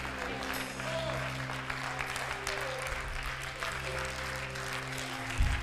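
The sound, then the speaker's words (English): An audience at a church healing service claps steadily together, a dense wash of many hands, with a low hum of voices and a resonant drone beneath the applause. “Come on, clap your hands.”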